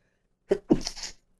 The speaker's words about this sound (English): And I'm going to sneeze.